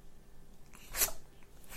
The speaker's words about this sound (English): It's not even about having a little sneezing ferret in my arms while I record this, which is something that I don't normally do. But he wanted to be part of it today. He wanted to say hello.